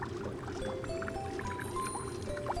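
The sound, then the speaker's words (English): An AquaClean 3000 water filter, filtering pollutants out of fresh stream water, runs with a steady low hum while liquid drips and gurgles throughout, with small wet plinks and a few faint tonal whines scattered over the continuous churn. “This is an AquaClean 3000. It's an island invention that filters pollutants out of fresh water.”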